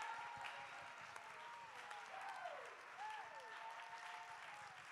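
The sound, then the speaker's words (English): A church audience claps steadily for several seconds to give God praise, a dense, continuous wash of applause that stays fairly even in loudness, with faint sustained tones and a few gliding calls beneath it. “Somebody clap right about now.”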